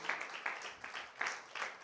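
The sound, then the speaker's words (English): A church audience claps hands for the praise team, a steady wash of applause with louder accented beats falling in a regular rhythm, moderately loud and continuing throughout without voices. “can we give our praise team a hand clap?”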